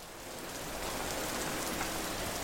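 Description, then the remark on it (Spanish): Steady rain begins falling outside a café around six o'clock, a dense, continuous hiss with pattering drops striking a hard surface and swelling slightly louder after the first moment. No voices are heard. “Al salir de la cafetería, empezó a llover.”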